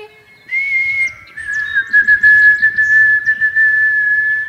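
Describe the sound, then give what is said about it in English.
A person whistles an imitation of a white-throated sparrow's song: a short, pure high note followed by a long, steady, slightly lower whistled tone, clear and fairly loud over faint background rustle. “So this is white-throated sparrow. We call it the sound of the North Woods.”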